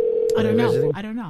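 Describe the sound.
A steady electronic phone tone from an outgoing call to a friend hums for just under a second, with a person's voice talking over it, then the tone cuts off while the voice continues.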